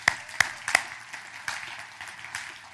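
Congregation applauding the Lord: a few sharp, loud claps at the start, then a steady, softer patter of many hands clapping together with no one speaking.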